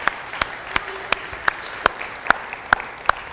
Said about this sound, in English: Clap.